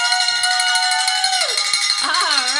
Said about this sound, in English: You get to ring the bell. So you can pick that up and ring it with gusto.